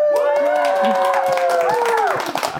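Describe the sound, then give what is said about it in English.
An excited crowd at the University of Glasgow, there to hear a researcher talk about her research, cheers and claps loudly and steadily for a couple of seconds, with sharp scattered claps and rising whoops over a dense roar, fading slightly at the end. “A very enthusiastic crowd is here to listen to your research today.”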